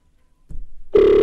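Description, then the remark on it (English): A phone line's ringing tone on an outgoing call starts abruptly as a steady, loud electronic tone, preceded by a brief low rumble of handling noise. No one speaks. “Right, it's ringing.”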